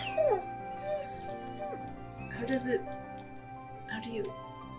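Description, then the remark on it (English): A person mimics a dog with growling noises, several short throaty bursts with whiny rising and falling pitch, fairly loud, no ordinary speech. “I attempt to, and it comes out as like growling noises.”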